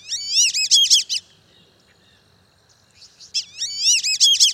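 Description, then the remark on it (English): Black-bellied whistling ducks give bursts of shrill, wavering whistles, a rapid run of high notes, then a pause of near silence before another similar whistled series. “They're called black-bellied whistling ducks, and they're widespread in Central and South America.”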